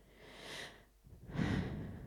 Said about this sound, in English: In the work Cloud Studies, the collective forensic architecture interview a man whose home in Gaza has just been bombed. He coughs into the microphone.